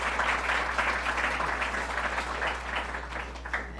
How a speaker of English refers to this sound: Let's give a round of applause to Hope Knight.